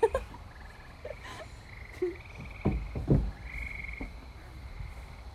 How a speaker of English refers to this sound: I just heard something. Amelia, shut up. It was a frog.